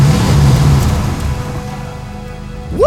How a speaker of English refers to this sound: But before he could aim for the tires, another truck came roaring up behind him and he dove out of the way.